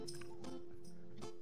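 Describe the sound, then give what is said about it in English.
Quiet crunchy chewing of jerky, with about four crisp bites at a steady, unhurried rhythm and a faint hum underneath. No one talks. “Well, this is ASMR crunchy.”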